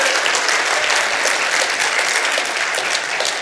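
Sustained applause from a church audience, a dense steady wash of many hands clapping at once, loud and even throughout with no voices standing out.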